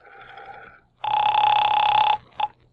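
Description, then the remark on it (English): A telephone rings loudly: a softer ring trails off, then a long, strident ring for about a second, followed by a brief clipped burst. No one speaks. “Well, there's the phone.”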